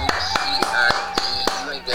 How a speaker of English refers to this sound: Yeah, hit the claps. Man got a promotion.